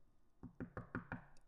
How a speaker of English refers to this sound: Do I knock? If you want to, yeah. Pretend there's an office.